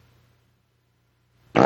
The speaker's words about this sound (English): he says parp, which I think might be a fart sound